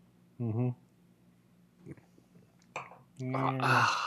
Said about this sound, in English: Ooh, hold on. Let me get a quick. Just go ahead and get a sip real quick.